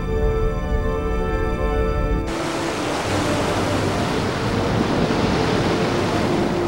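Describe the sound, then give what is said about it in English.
A low droning hum with steady tones cuts off abruptly into a loud, continuous rushing roar of ocean waves that holds evenly without distinct breaks; no one speaks. “It's an ocean.”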